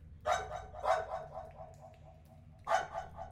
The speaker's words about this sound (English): As you round a corner, you hear barking.